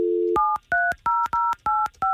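A brief dial tone, then six quick telephone keypad beeps pressed one after another in a steady rhythm as someone dials a man's phone number, each a clear two-pitched tone with a click, fairly loud.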